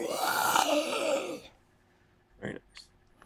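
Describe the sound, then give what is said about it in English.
A voice imitates a monster's howl: one loud, raspy, wavering cry lasting about a second and a half, then silence and a short sharp breath. “Okay, so you play Danny Boy, and the monsters, you hear a howl.”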